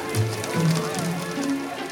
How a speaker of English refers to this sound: A little rain never hurt anyone. Those aren't raindrops! That's hail! Quick, everyone, inside!